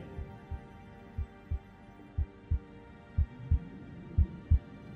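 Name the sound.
heartbeat sound effect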